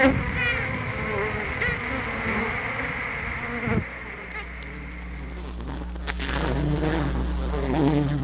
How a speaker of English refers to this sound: This is the waggle dance. That's the buzzing sound that Ariel was hearing inside the hive.